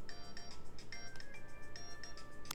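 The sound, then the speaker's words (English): A phone ringtone plays a quick, repeating electronic melody of bright pulsed tones, fairly soft, with a faint background hum and no voices. “this lawsuit that you're in the middle of, oh boy, phone call, quick pause.”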